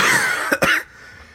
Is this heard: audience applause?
no